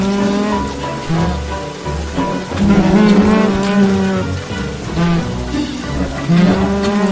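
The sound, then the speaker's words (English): A video game boss monster called Moose Goose, a gigantic goose with the head of a moose, gives its moose-like goose call: loud, low, drawn-out honking bellows repeated several times in a steady series, each with a bleating, mooing quality, over a noisy rumbling background and no talking. “And Moose Goose is a gigantic goose with the head of a moose. Ooh. Untitled Moose Goose game. Yeah, and he makes sounds.”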